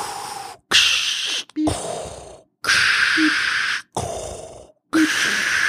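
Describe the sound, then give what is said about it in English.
A voice imitates a hospital breathing machine with loud, raspy hissing breaths, in and out, repeated about six times in a steady rhythm with brief pauses between them. “And then you wake up from your coma in a hospital room with like beep, beep, beep. And then the breathing machine.”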